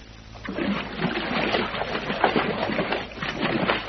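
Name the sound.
people splashing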